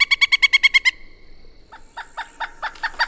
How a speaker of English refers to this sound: Wait a minute. I think I hear a pileated woodpecker.